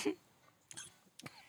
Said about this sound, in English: Did you fucking choke? I was choking. Oh, you almost swallowed the mic.